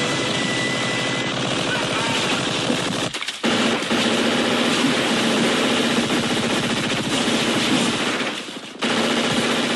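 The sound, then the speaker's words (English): A police officer in Florida fires gunshots because an acorn landed on the hood of a car: loud, rapid bursts that run almost continuously, broken by two brief pauses, each shot a sharp crack blending into a dense, rattling barrage. “especially after an ACORN incident in Florida, where a police officer just went full Rambo because of an acorn that landed on the hood of a car.”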